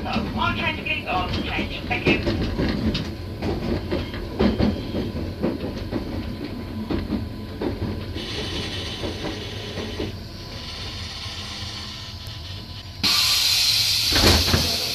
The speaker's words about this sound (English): That was on board a train coming into Shrubhill Station.